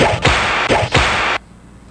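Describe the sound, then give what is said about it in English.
A whip cracks three times in quick succession, each a sharp, loud snap over a steady rushing hiss that cuts off abruptly just after the last crack. “A whip? What a whip, that? Yes.”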